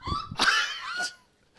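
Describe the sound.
A voice imitates a lemur's squeak: a few shrill, whiny squeals rising and wavering in pitch, fairly loud, bunched into about a second, followed by a brief faint chirp after a pause.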